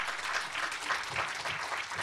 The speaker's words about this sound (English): Please welcome …, the creator of the … album. It's going to take a lot of clapping. He's miles away.